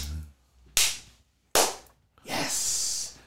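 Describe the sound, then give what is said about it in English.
Two sharp, loud hand slaps, made to imitate spanking, land about a second apart, each ringing briefly, followed by a longer rough, hissing burst of noise. No talking is heard. “So I had like slaps like over here.”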